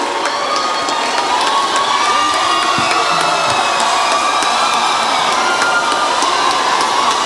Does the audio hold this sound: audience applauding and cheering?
yes